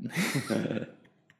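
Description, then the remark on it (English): A breathy, airy slurp of hot tea from a cup lasting under a second, followed by a couple of faint soft clicks as the sip ends. No talking. “I'm going to have a sip of tea while I think about that.”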